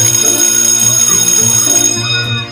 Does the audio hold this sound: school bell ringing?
yes